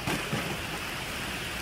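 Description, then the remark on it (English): Heavy rain pours in a dense, steady hiss, with a brief low rumble of thunder at the very start, then only the constant downpour. No voices. “Imagine the storms, whatever they are for you.”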